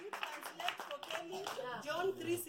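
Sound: audience clapping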